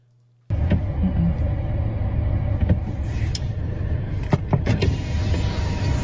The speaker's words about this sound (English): She rolled down the window but won't get out the car.